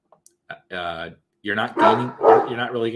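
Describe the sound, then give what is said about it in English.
Dogs bark loudly, first a short yip, then a sustained bark, followed by a string of overlapping, drawn-out barks from more than one dog. “The dogs agree.”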